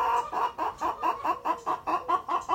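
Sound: rooster clucking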